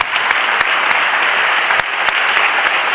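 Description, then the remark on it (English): An audience at a Christian worship service claps hands in praise of the name of Jesus, in a loud, dense, steady wash of applause, many overlapping claps with a few sharper individual smacks standing out, and no voices. “Clap your hands because you know the name.”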